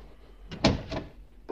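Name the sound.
door closing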